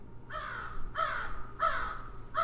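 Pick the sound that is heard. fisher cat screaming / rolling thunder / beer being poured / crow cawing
crow cawing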